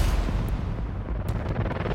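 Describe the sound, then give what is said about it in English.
A few sharp gunshot cracks ring out in the early morning at irregular intervals over a constant heavy, booming low rumble, loud, with no voices. “Until early morning gunshots shatter an American dream.”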